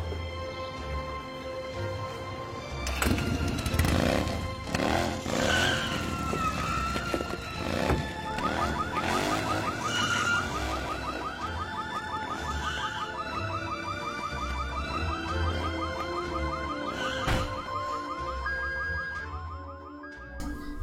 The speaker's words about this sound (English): And in classic Dr. Drew fashion, he can't actually drive a motorcycle well, and he crashes into multiple parked cars on his way down the street.